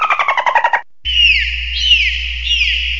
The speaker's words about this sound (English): Ringtone four is the dolphin sounds. So this is what the dolphin sound like.